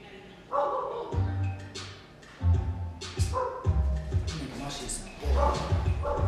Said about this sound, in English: Yeah, we got pit bulls barking, pregnant.